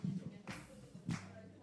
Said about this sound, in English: Oh, there's clapping. There's encouragement in the room.